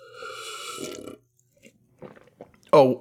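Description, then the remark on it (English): A drawn-out slurp of someone sipping hot mustard water, followed by a few soft mouth clicks and swallowing noises, then a voice suddenly starts up at the end. “I was just having a sip of my hot mustard water.”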